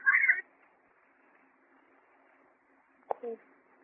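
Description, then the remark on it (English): Two short, strained yowls from two cats, one at the start and another after a long quiet stretch, each a harsh, mid-pitched cry standing out against faint background hiss. “Could two cats make all that noise?”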